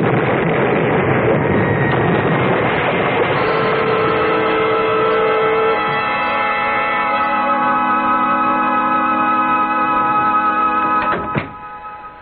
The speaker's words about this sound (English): For suddenly, behind us in the cave, the floor exploded with a roar of flame and hissing steam.